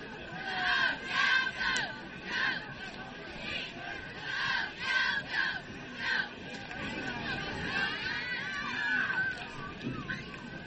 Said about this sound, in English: Dixie Greyhound cheerleaders along with the youngins down there cheering tonight.